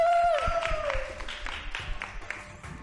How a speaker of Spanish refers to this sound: Es que en este programa nunca se aplaude. En este programa vamos a aplaudir un poquito, por favor.